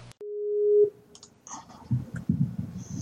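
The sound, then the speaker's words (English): A sharp click, then a single steady electronic busy tone lasting under a second as a call drops because a router and modem combination failed, followed by garbled, crackling line noise and bursts of digital distortion. “It seems our the shitty router modem combination we mentioned earlier decided to shit itself.”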